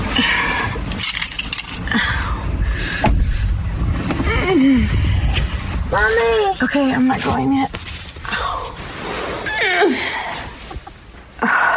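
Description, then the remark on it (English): A woman with back pain getting up off the couch, out of the car and out of bed makes several drawn-out, effortful moans and short grunts, their pitch bending up and down, in bursts over a steady background rumble, with a few brief spoken words between them. “Listen to these grunts and moans I've recorded of her and tell me that she isn't exaggerating it.”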